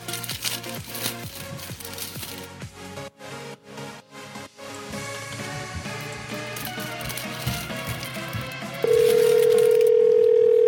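A loud, busy musical phone ringtone plays with punchy rhythmic hits, then a steady, sustained electronic tone cuts in near the end and holds. No one speaks.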